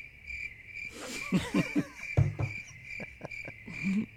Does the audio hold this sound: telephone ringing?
no